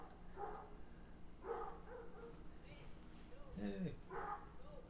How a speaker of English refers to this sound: There's dogs barking. We got you can surely hear this. Barking in the neighborhood.